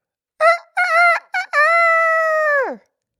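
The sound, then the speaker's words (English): A single loud rooster crow: a few short choppy notes followed by a long drawn-out final note that drops away at the end, heard alone with no talking. “Rooster.”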